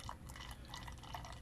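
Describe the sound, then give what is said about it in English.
Beer glugs steadily from a freshly opened bottle into a glass, a continuous bubbling pour with fizzy splashes and gurgles throughout, no voices. “How good's that sound of a beer pouring?”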